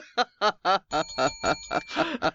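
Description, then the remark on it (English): Four sharp sung syllables imitate a bell's ding, then a sustained metallic ringing tone hangs beneath a quick string of voiced syllables, moderately loud. “How's that Christmas? Ringing bells. You associate ringing bells with Christmas.”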